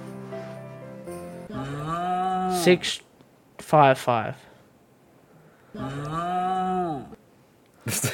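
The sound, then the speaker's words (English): A person imitates snoring, played back as a soundboard clip, with loud, drawn-out, groaning vocal snores, three long ones with a shorter snort-like burst between them and a brief sharp noise at the end. “that was you snoring. Doing that snore sound.”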